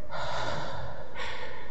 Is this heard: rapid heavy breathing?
yes